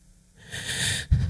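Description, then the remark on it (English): A voice imitates the speaker's own panicked breathing while lying squeezed under a sheet of rock: one raspy, hissing gasp that swells and holds for about half a second, then breaks into a short, forceful huff. “All of a sudden, your own breathing becomes part of the panic attack.”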